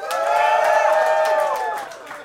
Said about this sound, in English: clap your hands.